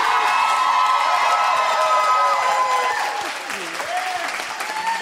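A crowd applauds steadily for about five seconds, dense clapping mixed with cheers and a few high whoops rising above it, easing slightly toward the end.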